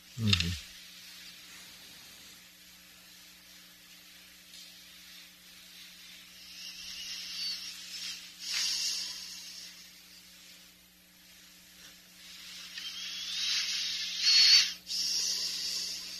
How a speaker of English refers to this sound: Is it him breathing? It's not me. It's not me breathing.